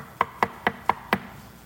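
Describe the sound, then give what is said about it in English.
Five quick, evenly spaced knocks on what sounds like a wooden door, moderately loud, with no voices. “I am outside knocking.”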